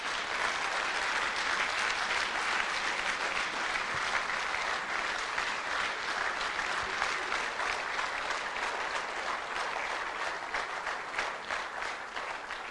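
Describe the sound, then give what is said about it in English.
A crowd applauds steadily, a dense, even wash of many hands clapping that holds at a constant level for the whole stretch without fading. “Keep clapping.”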